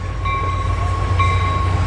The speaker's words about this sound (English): I hear a train.